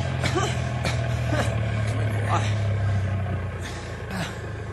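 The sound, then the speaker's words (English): A truck engine rumbles steadily at a low pitch, easing down slightly toward the end as the truck is stopped, with muffled voices and a few brief knocks over the hum. “Grab him! I'll stop the truck.”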